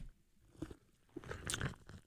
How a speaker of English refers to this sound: Yeah, because we take our first sip, yes. And we got to let them hear it.